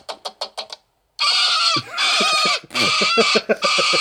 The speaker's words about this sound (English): What is it? It's a parrot.